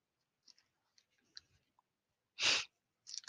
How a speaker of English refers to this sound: Pardon me. That was my sniffles telling on me.